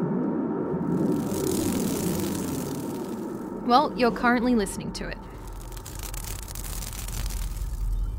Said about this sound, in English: Or to be a little bit more specific, what you're listening to are the strands of a double helix of DNA tearing apart like a zipper being pulled open and closed.